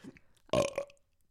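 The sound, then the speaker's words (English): A single loud burp from a man, starting abruptly with a low, rumbling tone and a brief second surge before trailing off, preceded by faint quiet noises. “Excuse him, my lovelies. He's being very rude right now.”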